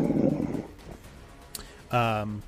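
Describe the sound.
A person imitates a wolf's whimpering whine: a short, nasal, tonal whine near the end, preceded by a burst of breathy noise and a faint click.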